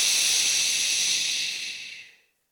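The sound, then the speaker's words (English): A preacher's voice makes a long, steady shushing sound, a hissy breathy "shh" held for about two seconds before fading out into silence, imitating Jesus hushing the sea. No other talking is heard. “So when we look at this, Jesus really looked at the sea and said, shh.”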